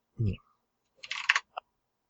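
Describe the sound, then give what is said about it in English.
A quick flurry of keyboard typing, a handful of crisp clicks in a short burst and one final tap, preceded by a brief low vocal murmur. “You can't talk when you're typing.”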